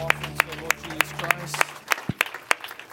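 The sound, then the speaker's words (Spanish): At a church service, an audience applauds the Lord Jesus Christ, clapping in a steady, even rhythm. There are about ten sharp claps in three seconds over a low sustained hum that fades partway through. “Vamos a darle un aplauso al Señor Jesucristo.”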